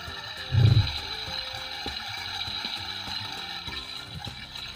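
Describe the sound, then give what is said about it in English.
A sharp clunk like a pulled chain, made by a half-moon button sunk into the top of a toilet, is followed by a steady rushing flush of water with faint rattling, continuing for several seconds, with no one talking. “It's got one of those kind of full moon, half moon buttons sunken into the top of it that makes a realistic chain pulling sound.”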